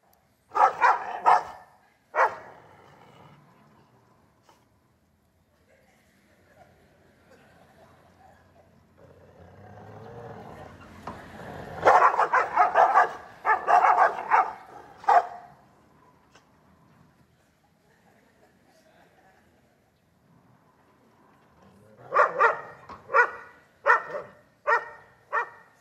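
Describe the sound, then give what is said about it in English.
Two dogs bark aggressively at each other through a fence, fighting, in three loud, rapid bursts at the start, middle and end, separated by quieter stretches with a low rumble in between. No one speaks. “And it was these two dogs fighting each other until the fence is taken away.”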